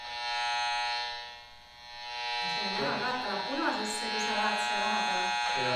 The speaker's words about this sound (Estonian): Ma näengi nüüd seda madasageduse mõõtja tööle, mis teeb selle heliks. Ja siis saab siit kuulata.